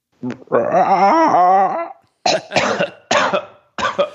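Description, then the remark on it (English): A voice lets out a loud, strained, wavering roar for over a second, then breaks into three harsh, hacking coughs in quick succession; a man attempting a roar while getting over a cough. “The inside joke there is I'm just getting over a cough.”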